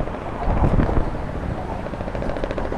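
A helicopter slowly passes overhead, its rotor producing a steady, rapid thumping over a broad mechanical roar, fairly loud and continuous with a brief swell early on.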